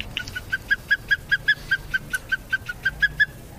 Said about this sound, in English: Osprey. Oh, wow. That's a scary bird. Nice. It's a surprisingly chill call for...